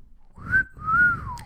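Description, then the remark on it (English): A person whistles two close, clear notes: a short rising tone, then a longer one that slides gently downward, with a soft low rumble underneath and no talking. “In Arkansas, it's the whistling wampus.”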